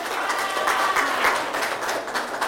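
Steady applause from an audience, a dense wash of many hands clapping at a fairly even level throughout, with no voices standing out.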